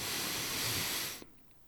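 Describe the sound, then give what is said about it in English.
A long, breathy rush of air as two people take a deep breath together, holding steady for about a second and then cutting off into near silence. “Please enjoy the ASMR of us breathing for a moment.”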